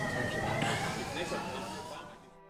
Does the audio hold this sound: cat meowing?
no